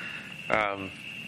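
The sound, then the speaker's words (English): A steady, high-pitched cricket trill hums continuously throughout at a moderate level, with a brief burst of a person's voice rising over it midway. “Can everyone hear me over the crickets?”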